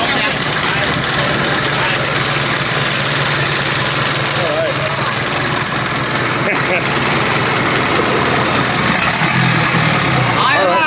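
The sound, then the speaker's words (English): A boat's loud, steady engine idles with a low rumbling drone throughout, while people talk over it and faint chatter drifts in the background. “I like the engine.”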